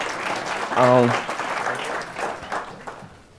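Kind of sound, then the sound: crowd, audience applause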